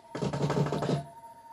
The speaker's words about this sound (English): I barely made my escape before they broke down the door.